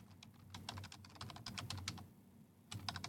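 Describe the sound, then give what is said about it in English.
Rapid, uneven keyboard typing as someone enters web links, a dense run of clicking keystrokes with a brief pause before another quick burst, over a low steady hum. “usually does this, and you don't hear the typing, so sorry.”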